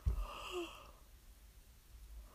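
A short, breathy yawn, a rising airy exhale with a slight voiced tone that fades out within a second, followed by quiet hiss.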